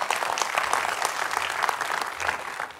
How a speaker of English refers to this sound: Come on, clap your hands to the Lord right there, church.